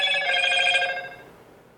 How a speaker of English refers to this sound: That's my new phone, by the way. I'm trying to figure out how to turn it down and all that stuff.